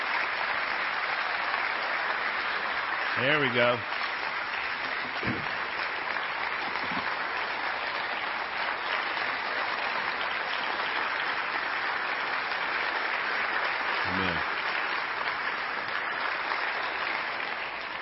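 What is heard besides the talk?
standing ovation applause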